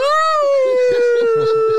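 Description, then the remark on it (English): A weeping person imitates a howl: one long, loud, steady wail that holds its pitch and sags slightly toward the end. Lower speech-like sounds run beneath it through the second half. “I started weeping uncontrollably and howling at the moon.”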